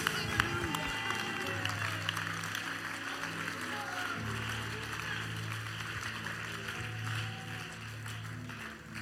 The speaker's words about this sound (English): Somebody clap your hands and rejoice.